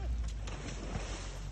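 A boat's motor rumbles steadily with rushing water and wind noise on Traverse Bay, Michigan, near a burning speedboat, a dense low drone that stays constant for the whole short stretch.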